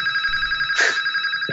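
A landline home phone rings steadily with a bright, warbling electronic trill, fairly loud and continuous throughout, with a brief burst of louder ringing midway and no one speaking.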